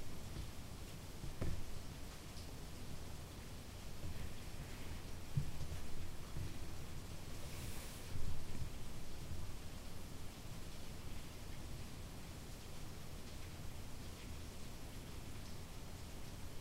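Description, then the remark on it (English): Steady, dense hiss of rain falling continuously, broad and even with soft patter and occasional faint louder drops, moderately quiet and without any voices. “Right now we can hear the original person in the falling rain.”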